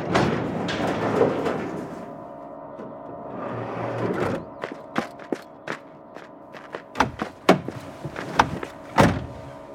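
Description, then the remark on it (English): A car's sliding door rumbles along its track, followed by a series of sharp clicks and knocks as it latches shut, with no talking. “I'll get the door open. We have to lift it in.”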